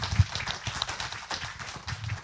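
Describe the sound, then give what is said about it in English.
Steady applause from an audience for the speakers, a dense patter of many hands clapping at once, fairly soft, with no voices over it. “Let's have one more round of applause for our speakers.”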